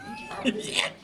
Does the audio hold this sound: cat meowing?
yes